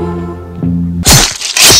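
A low, steady humming tone gives way to two sharp, loud cracks about half a second apart, like a chocolate candy bar being snapped into pieces.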